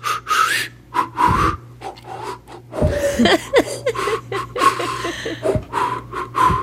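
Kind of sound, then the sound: human body sound, heavy breathing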